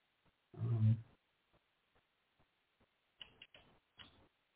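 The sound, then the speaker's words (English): A dull thump, then faint scattered ticks, followed by several short, scratchy strokes of a pen writing on a piece of paper. No one speaks. “I grab my pen and my piece of paper for things I want to look into next week.”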